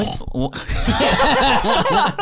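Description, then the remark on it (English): A person makes a run of rapid, throaty pig-like snorts and grunts, loud, in a quick rhythmic burst lasting a couple of seconds, imitating a pig. “That's what he does. He snorts.”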